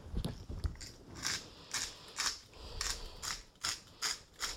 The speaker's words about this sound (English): I'm grinding the salt. This is ground coarse sea salt.